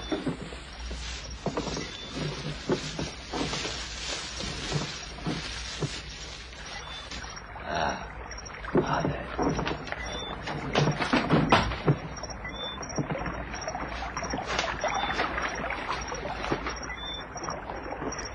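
Oars dip and splash steadily in water as a man rows a boat away, with creaks and wooden knocks from the boat mixed in, continuous with no voices.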